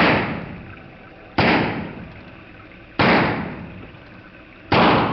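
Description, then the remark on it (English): Four loud, sharp gunshots fire at uneven intervals roughly a second and a half apart during a shootout involving police, each blast trailing off in a long, rumbling echo before the next. No voices are heard. “They shot the lieutenant!”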